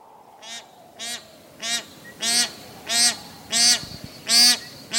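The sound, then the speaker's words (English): Bar-headed geese, gray-bodied, 5-pound birds with zebra-striped heads, honk in a steady series of about seven nasal calls, evenly spaced and growing louder, with a low background rumble and no talking. “How do these gray-bodied, 5-pound geese with zebra-striped heads breathe at such high altitudes, since pilots and many mountain climbers need oxygen at half that altitude?”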